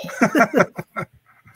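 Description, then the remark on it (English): A short soundboard sound effect of dog barking, four or five quick yaps in a fast rhythm that fade into a few softer trailing sounds, fairly loud with no talking over it. “Next time you pick a dog, you say dog, and I do this.”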